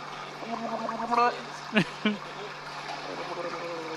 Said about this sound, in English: Just keep watching. Blowing bubbles.